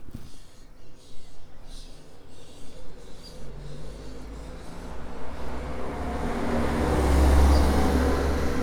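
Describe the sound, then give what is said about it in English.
Wind buffets an open roadside at a bus stop at Normandy Cross in Black Alton while a vehicle approaches, its broad rushing rumble swelling steadily louder and peaking near the end as it passes by. “We're at the bus stop at Normandy Cross in Black Alton, sheltering from the wind.”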